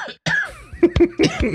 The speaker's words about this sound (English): Don't make me laugh. A cough.